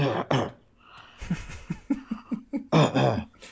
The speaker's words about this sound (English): You need some cough medicine.